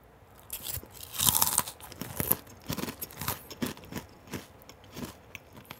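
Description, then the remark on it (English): Crunching of dry Lucky Charms cereal being eaten, with one loud burst of crunches near the start followed by a steady series of softer chewing crunches, alone without any talking. “You know what that was? What? Lucky Charms.”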